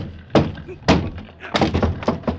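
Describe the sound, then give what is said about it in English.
A locked door down a hall is kicked in, in the radio drama Broadway's My Beat, with a series of heavy, booming thuds, roughly five hard blows at uneven intervals, the later ones coming quicker, with a splintering crack to some impacts. “Danny, something happened. Kick it in.”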